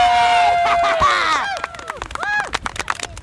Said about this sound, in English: I think we deserve to give ourselves a big round of applause, guys.